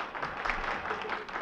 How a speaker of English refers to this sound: The dancers bowed. Everybody applauded.